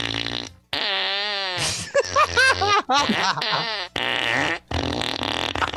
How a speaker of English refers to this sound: Yeah, so it's just a fart. Why do you need the guitar? It's just a fart box. Like, what is this doing?